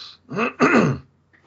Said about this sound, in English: As the discussion unfolds, oh, hang on, I'm going to clear my throat here. Goodness me.